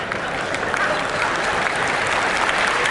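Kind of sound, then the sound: crowd, audience clapping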